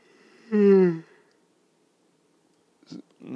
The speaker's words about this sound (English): I can't stop yawning.